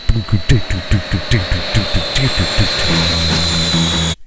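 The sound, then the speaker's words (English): A jet airliner's engine whines on a steady high pitch over loud, rhythmic pounding pulses at the opening of a song's opening track, giving way to a sustained low droning roar before cutting off abruptly. “And that's not even a guitar. That's a fucking... It's a jet airliner.”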